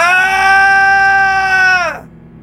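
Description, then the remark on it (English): A single drawn-out guttural scream holds a steady, strained pitch for about two seconds, then sags and breaks off abruptly, leaving only faint background noise. It is loud, with no talking. “A guttural scream.”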